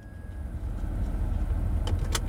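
Someone getting into a truck: a steady low engine rumble fills the space, then two quick sharp clacks near the end, like a door or keys. No one speaks.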